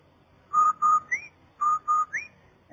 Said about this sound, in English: Did I hear what? That whistle. That's the Rinso White whistle.